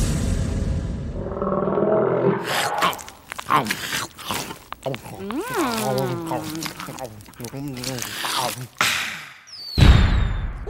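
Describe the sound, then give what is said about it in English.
A voice imitates a bunch of alligators chewing sticky peanut butter and jelly sandwiches: wet smacking and gooey mouth noises mixed with low growls and warbling roars, loud, with a thump at the end. “Okay, I was really inspired by the alligator, so I'd like to have a bunch of alligators eating peanut butter and jelly sandwiches.”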